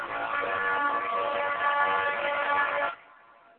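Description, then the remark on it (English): A horn from a train coming down the track sounds one long, loud, blaring blast, steady and rich in tone, holding for about three seconds before cutting off into a faint fading tail. No one speaks. “That's a damn train coming down the track, boy.”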